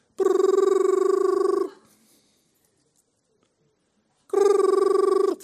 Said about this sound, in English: You just heard the phone rings. It would go like this.